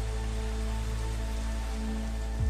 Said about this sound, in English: I remember the cold breeze blowing through my hair, my legs hitting the brambles and scratching my hands against the bark, the cold rain hitting my skin.